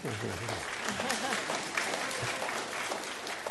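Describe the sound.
Steady applause from an audience, a dense wash of many hands clapping at an even level throughout, with a brief voice heard underneath at the start.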